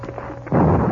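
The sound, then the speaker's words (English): A low, murmuring rumble gives way halfway through to a sudden, loud crack of thunder in a storm in the foothills, with strong wind and lightning, bursting into a heavy, sustained roar filling the rest of the second. “By the time they reached the horses, wind began to blow strongly and lightning crackled around them.”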